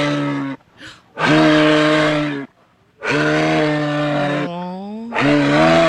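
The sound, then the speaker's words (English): A moose calls in a series of long, loud, low groaning bellows with a buzzy, harmonic tone, separated by short pauses; one call bends upward in pitch near its end. “That's a moose, everybody. We got a moose, so cute.”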